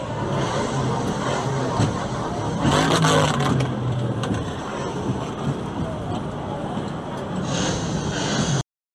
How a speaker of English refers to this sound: As soon as we started exiting the station, I noticed there were so many speakers and they started making engine revs.